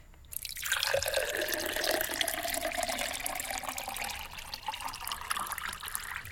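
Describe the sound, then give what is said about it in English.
Liquid pours steadily into a glass, a continuous splashing gurgle that starts abruptly and runs unbroken for about six seconds, with no voices over it. “would you begin to pour, please? Here we go. Shout stop.”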